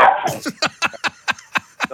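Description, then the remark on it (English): A grey female dog scuffles and bites playfully at a man in a talk radio studio, letting out a quick run of short, breathy huffs and snorts in a steady rhythm, about four per second. “is she biting you? Yeah, … now getting attacked live on talk radio”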